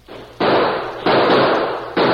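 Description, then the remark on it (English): Gunshots in a shootout as people defend a house: three loud, sharp blasts at uneven intervals, each followed by a long noisy roar that runs into the next shot. No voices are heard. “We can hold them off until the Lazy Bee riders hear the shooting.”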